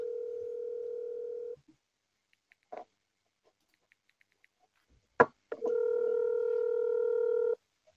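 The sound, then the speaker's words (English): Telephone dialing and ringing as a number is called back after the other party hung up: a steady electronic phone tone holds for over a second, a few faint clicks and one sharp click follow, then another long, even tone sounds. No voices. “Hold on, they hung up. What the f- we're calling back.”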